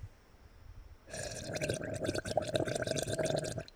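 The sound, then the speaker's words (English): After a moment of near silence, a sustained, rapid bubbling of water through a bong starts up and churns steadily for a couple of seconds before cutting off. “That bong was too much.”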